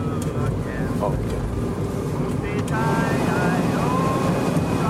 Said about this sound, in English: The defrost on this rental car. Oh, turn it up? Yeah.